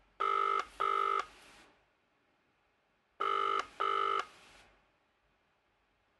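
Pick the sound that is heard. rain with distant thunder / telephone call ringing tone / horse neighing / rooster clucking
telephone call ringing tone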